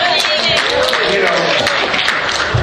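A crowd applauds steadily, a dense, loud wash of clapping hands with scattered cheers and voices mixed in, sustained throughout without a break.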